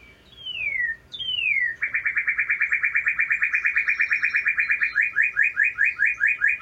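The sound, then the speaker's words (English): A northern cardinal sings two loud, clear downslurred whistles, then a long, rapid series of bright repeated notes that slows near the end into distinct slurred chirps. “The next bird we're going to talk about is a northern cardinal”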